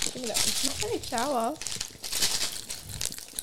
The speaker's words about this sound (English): Open the packet.